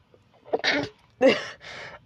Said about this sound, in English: I'm gonna sneeze now, so wait.